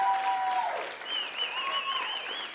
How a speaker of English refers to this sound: Why don't we give Jesus one more round of applause? Because praise God.